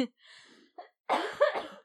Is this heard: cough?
yes